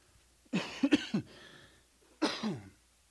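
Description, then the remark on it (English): A fairly loud bout of coughing and throat clearing: a cluster of three quick rough coughs, a short pause, then one more harsh cough, with no talking. “Two last things, cough and then this.”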